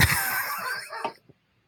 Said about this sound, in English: Can you edit out the dog? Because he's really fucking annoying.